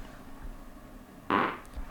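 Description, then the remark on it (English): A short, soft fart, a brief breathy burst of about a quarter second, fairly quiet, with no talking around it. “Little fart.”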